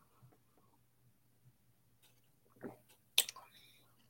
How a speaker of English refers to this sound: See how dark that is. Little KBS action right there. Got that from Founders. So Founders beer and a KBS down in there. One sip. This is going to be a whole sip session, though. Here we go.